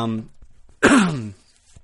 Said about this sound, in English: sorry about the coughing today, guys.